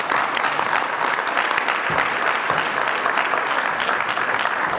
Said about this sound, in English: So, you know, …, as … encourages more applause, which I understand.